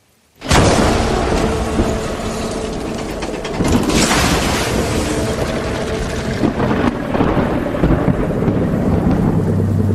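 A thunderstorm bursts in suddenly and loudly, with heavy rumbling thunder rolling continuously over steady pouring rain for the full stretch, swelling in a few booming surges. No one speaks.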